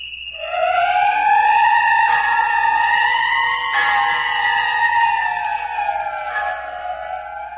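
A loud, shrill whistle blows in one long unbroken blast lasting several seconds, its pitch wavering slightly and dipping toward the end, with no voices over it, in the radio serial The City of the Dead.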